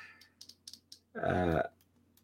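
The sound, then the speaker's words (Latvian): Small plastic buttons on a vape mod click several times in quick, uneven succession, crisp, then a brief spoken sound interrupts before one more faint click. “Pogas šeit tās diezgan tādas klikīgas, visi kārtībā.”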